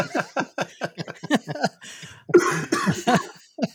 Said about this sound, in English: I'm not feeling the best tonight. So every time I laugh, I'm going to start coughing. So prepare for a lot of coughing.